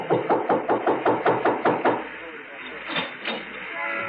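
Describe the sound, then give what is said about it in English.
A quick run of about nine sharp knocks on the first apartment door of a four-apartment house on Turner Street, fairly loud, lasting roughly two seconds before giving way to quiet room tone. “No name of Martin on the mailboxes, so I tried the first door.”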